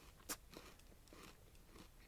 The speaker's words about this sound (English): Okay, let's have a look at this. What it looks like. Let's have a little crunch.